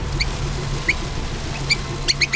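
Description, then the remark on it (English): A tiny mouse squeaks in short, high-pitched bursts, about five scattered chirps, a few doubled, over a low steady hum with no voices. The mouse scurries around in circles. “He looked down and was surprised to find a tiny mouse standing at his feet.”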